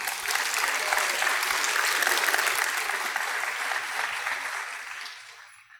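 An audience applauds in a steady, dense round of clapping that holds for several seconds and then fades out toward the end.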